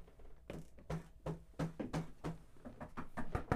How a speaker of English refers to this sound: It's a lot of wood knocking over here. Oh, yeah. None of it was emergency. We came prepared. All of it was literal, actual wood, too.